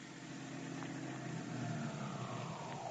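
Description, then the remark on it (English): Dick Tracy's car engine runs steadily, then its pitch sinks gradually as the car slows to a stop on a steep hill outside the apartment house where Tess Trueheart lives. It is a continuous, moderately loud mechanical hum with no voices. “The great detective is just stopping outside the apartment house where Tess Trueheart lives.”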